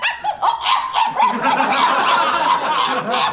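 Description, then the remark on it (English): A person imitates a small dog being eaten by coyotes, frantic, high-pitched terrified yelping and whimpering, a rapid, continuous stream of shrill cries delivered loudly for several seconds. “do an impression of a dog getting eaten. A dog being eaten.”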